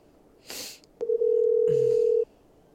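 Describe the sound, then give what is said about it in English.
A T-Mobile mobile phone's steady electronic connecting tone, as a call to voice message connects, sounds for about a second after a click, preceded by a brief hiss of handling noise. It's clear, with no talking. “It's a going voice message. It says it's connecting.”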